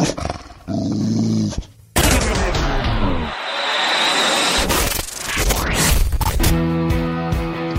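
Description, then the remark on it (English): A fierce attack dog snarls, growls and barks loudly, the aggressive noise continuing in harsh bursts for several seconds with a brief pause near the start. “I might have to get an attack dog outside the billboard.”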